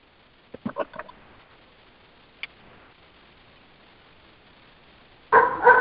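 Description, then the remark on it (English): Ginger the dog, outside on a porch, barks at the dog next door in a quick cluster of four or five yaps, then goes quiet except for a single click, before a louder burst of sound at the very end. “Ginger's trying to communicate with the dog next door.”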